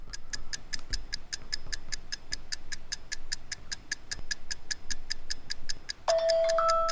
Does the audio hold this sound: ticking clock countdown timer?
yes